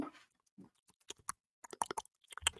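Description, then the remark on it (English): A person makes a rapid series of sharp clicking noises with their mouth, in short irregular bursts with brief pauses between them, fairly quiet, with no talking. “That clicking is a different one you're doing.”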